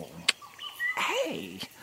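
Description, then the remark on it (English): Parrots whistle and trill, with bright sliding notes and warbling swoops broken by a couple of sharp clicks, all in a short, lively burst with no one talking. “The whistling and trilling of the parrots is especially beautiful today.”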